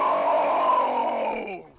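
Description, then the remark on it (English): A loud, drawn-out roar from a single voice, imitating a huge creature, held steady for over a second before sliding down in pitch and fading at the end. “And you hear a large roar”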